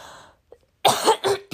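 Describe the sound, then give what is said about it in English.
A burst of harsh coughing: three rough hacks in quick succession after a brief pause, the first longest and loudest, with no talking. “I'm coughing, lots of throat chakra, speaking my truth over here.”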